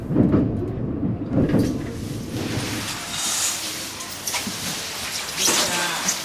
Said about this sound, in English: I hop on the train with those guys who are headed back to Tokyo.